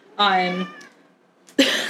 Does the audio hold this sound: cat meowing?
yes